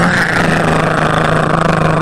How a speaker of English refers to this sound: It's like no other sound on the street. You know what that is. Somebody coming to get something. I don't even know how they drive that truck. It's about 5 gear shifts on it. And they use all of them. They want to make the most noise possible.